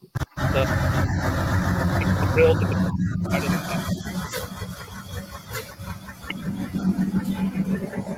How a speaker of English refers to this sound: Oh yeah, that's Justin Nevis. He's coming in. Here again. That's a 12-second quarter mile truck.